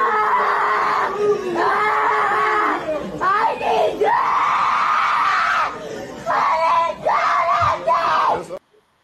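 A boy in a video, being punished by his father for acting up in school, screams and wails in long, loud, sustained bursts with brief gasping breaks between them, the cries rising and falling in pitch for several seconds before cutting off abruptly.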